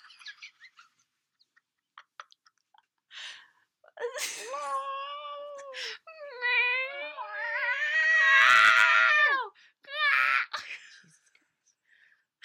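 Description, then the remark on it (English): A cat in heat caterwauling outside a window: long, wavering, rising-and-falling yowls, loud, with a few short sharp cries before and one more drawn-out wail after. “But so when she told Justin, there's a cat in heat outside my window.”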